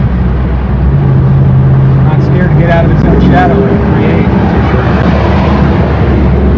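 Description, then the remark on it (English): A loud, steady engine of a 392 car roars with heavy low rumble, rising under the strain as the vehicle speeds up hard, while people talk over the noise. “I think we're gonna punch it.”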